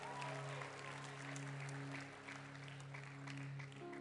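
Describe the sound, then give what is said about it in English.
Steady applause from a church audience for a woman about to share her testimony fills the whole four seconds, a dense wash of clapping with a sustained low hum or tone running beneath it and no speech. “Oh, put your hands together for her. Keep clapping for her.”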